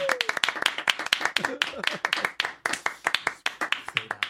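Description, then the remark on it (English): Rapid, steady hand clapping, sharp slaps repeating several times a second throughout, with voices murmuring and talking underneath. “I can clap longer than you.”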